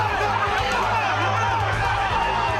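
A large crowd at a casino chants a fighter's name, a loud, steady roar of many overlapping voices with no pauses and no single voice standing out.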